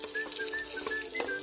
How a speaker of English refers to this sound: washing dishes right now. We recorded a little late, and listen.